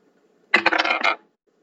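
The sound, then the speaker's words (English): A short clatter of dice, rolled instead of flipping a coin, rattling and tumbling across a hard surface, a quick burst of several sharp clicks lasting under a second, with no talking. “Well, I don't have a coin because I'm broke, but I am a nerd, so I have dice.”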